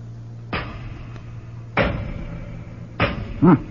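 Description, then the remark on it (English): Three heavy hammer blows strike solid doors to test how thick they are and get them open, spaced over a second apart and each ringing out briefly, with a low steady hum underneath and a short metallic resonance after the last. “All right, then we'll get the doors open by ourselves. Let's see how thick they are. Throw me a hammer, would you?”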